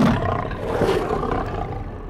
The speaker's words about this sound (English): As the soldiers flee, a saber-toothed tiger stalks them across the battlefield.